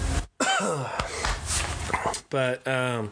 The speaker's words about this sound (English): I was not expecting that. I've been having some drinking problems on the podcast lately. It's like every podcast at some point, I'm like coughing over whiskey or tea or whatever's going on.